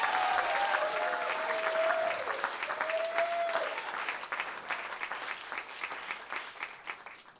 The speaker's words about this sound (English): Guys, give a big round of applause.